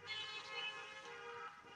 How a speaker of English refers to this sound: Ooh, they're doing a honking thing.